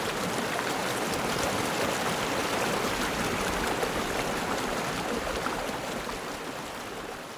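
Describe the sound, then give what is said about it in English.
Crow Creek, a glacial creek at Girdwood in the Chugach Mountains, rushes steadily over rocks. A dense, continuous wash of flowing water with no pauses and no voices, easing slightly in level toward the end. “Today, Crow Creek sounds peaceful.”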